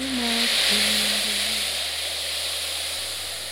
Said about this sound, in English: Mom's gonna cue the ocean.